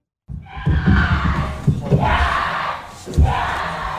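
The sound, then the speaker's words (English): A woman, a Philadelphia sports fan, screams loudly and excitedly in long, high-pitched shrieks, with a brief pause before a final burst, over a muffled, noisy background. “This is a Philly fan. You can just hear her screaming.”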